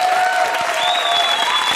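Steady applause from an audience, a dense continuous patter of clapping at even loudness throughout, with a faint sustained tone sounding underneath.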